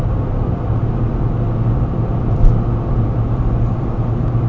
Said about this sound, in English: Right now I'm driving back to Wilsonville in this Chevy Spark. I actually have the car through Monday so I can get home.